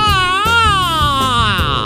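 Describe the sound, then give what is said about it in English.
A person makes the loud, high-pitched cooing squeals people make at a puppy, a few long wavering notes that slide up and down in pitch, with no words spoken. “you gotta text me a picture of that puppy just so I can make those noises that we didn't think we as humans could make.”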